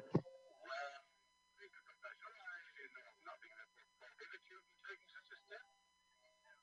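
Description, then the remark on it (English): A sharp clunk of a telephone receiver as a man in a movie scene hangs up on a judge in shock, then a quick goofy, swooping musical flourish, followed by a stretch of chattering voices under a faint steady hum. “So we get the goofy music, and he just hangs up the phone.”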